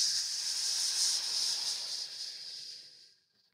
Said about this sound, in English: Okay, next, purge your breath by sipping it in like a straw through your lips. Filling up and then pausing briefly, squeezing your pelvic floor muscles and squeezing the breath out through your teeth like a hiss.